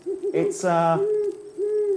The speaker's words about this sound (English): there's an owl right above you. Goodness me. Yeah, can you see it? I certainly can. It's looking down at me now in quite a demonic manner.